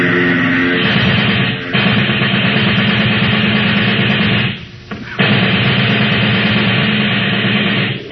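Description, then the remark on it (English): Long, loud bursts of submachine gun fire, aimed at the propeller of a plane headed straight for the shooters, rattle over the steady low roar of its engine, broken by two brief pauses before the shooting resumes. “Get out the submachine gun.”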